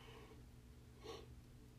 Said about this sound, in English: Sorry. Sorry, that was like the second yawn in like the last minute.